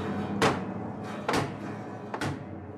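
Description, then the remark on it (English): Three heavy, evenly spaced bangs of a sledgehammer striking a stripped-down piano on the cheeks at the ends of the keyboard, each sharp crash followed by a dense, jangling resonance of strings ringing on beneath the blows. “And then a couple of well-aimed bangs with a sledgehammer, one on one end of the cheek, which is the end of the keyboard, one on the other end of the keyboard.”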